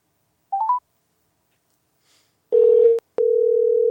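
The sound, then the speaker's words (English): An outgoing phone call rings out on the line: a few quick electronic beeps, then a steady, clear telephone tone that breaks briefly with a click and resumes. No one speaks. “Okay, it's ringing.”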